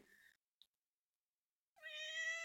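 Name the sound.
cat meowing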